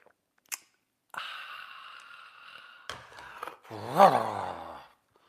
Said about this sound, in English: Fill it with your favorite liquid I like, coffee. And join me now for the unparalleled pleasure, the dopamine hit of the day, the thing that makes what? That's right, everything better. It's called the simultaneous sip, and it happens now. Go.